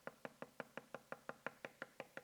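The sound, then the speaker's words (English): Rapid, steady knocking on a door or wooden surface, about a dozen crisp raps in quick even rhythm, fairly loud, with no voices. “And so they're knocking.”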